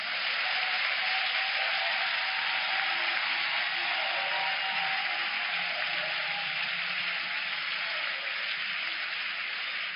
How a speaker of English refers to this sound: Let's clap for Jesus.